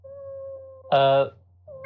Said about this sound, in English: Sorry, the damn cat's gonna give us away.